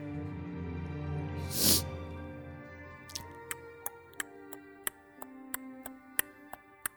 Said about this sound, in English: You hear a clock ticking along in perfect rhythm with the sea of stars.